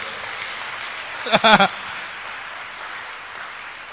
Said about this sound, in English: Clap for Jesus.